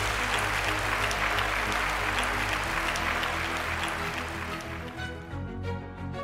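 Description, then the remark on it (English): Sustained applause from a large audience after an Intelligence Squared debate, recorded live at the IFT First annual event and Food Expo; a dense, steady patter of many hands clapping that holds loud for several seconds before thinning and fading toward the end. “And I want to thank all of you for attending and voting and applauding.”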